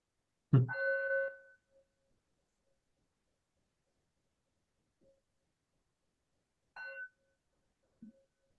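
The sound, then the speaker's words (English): A meditation bell is struck twice: a strong first ring whose clear tone lingers and fades slowly, then a softer second strike several seconds later, with a faint knock at the end. “And what's the feeling tone of hearing the bell ring?”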